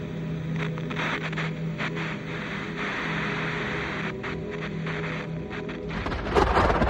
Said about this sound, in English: A particularly loud clap of thunder rouses Albert from sleep. The house rumbles and the window panes rattle violently.